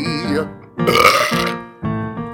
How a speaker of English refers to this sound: Then there comes a big old fat belch right in your face.